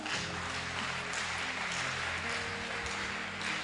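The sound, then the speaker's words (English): A large crowd claps steadily for several seconds, a dense, continuous wash of applause over low sustained musical tones. “I thought you would clap if it's okay.”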